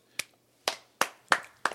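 Five sharp, crisp hand claps in an uneven rhythm, with short gaps between them and no voices. Each clap cuts off quickly.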